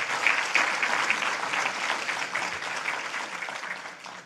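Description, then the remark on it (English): An audience breaks into sustained applause, a dense wash of many hands clapping at a steady level for several seconds before gradually thinning out toward the end. “Let's give her a hand clap even, you know.”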